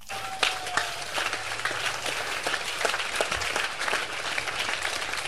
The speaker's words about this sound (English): I wish somebody clap his own hands.